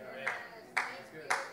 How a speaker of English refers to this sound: One golf clap.